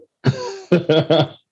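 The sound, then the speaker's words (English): A loud cough fit from smoking weed: one long rasping cough followed by three quick, harsh coughs in a rapid burst, with a throaty, clearing quality. “This is not a COVID cough. This is a weed cough for your listeners.”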